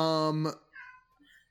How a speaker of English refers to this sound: My cat is losing his mind over here. He's just screaming.